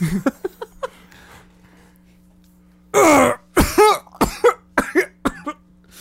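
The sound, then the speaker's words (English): A man's violent coughing fit, so bad he cannot speak: after a few small throaty sounds and a pause, a loud, harsh hack erupts, followed by a rapid string of raspy coughs, over a faint steady hum. “He is coughing so badly, and he's in a huge coughing fit right now that he can't speak, but he clearly has more that he wants to say.”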